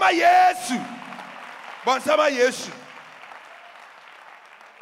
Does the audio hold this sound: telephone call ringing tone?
no